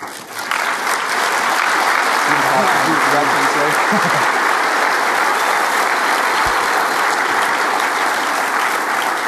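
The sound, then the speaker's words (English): Sustained loud applause from a church audience fills the whole stretch as a gift toward a seminary student's tuition is presented, steady and dense without letting up, with a few faint voices murmuring briefly underneath early on. “I want to clap for you and say thank you in an unbelievable way.”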